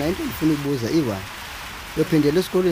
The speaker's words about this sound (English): Okay. Here we are at my dad's house and it's raining a lot. Okay. My father's shack, the roof is made with tins. You can hear because the rain sounds so loud.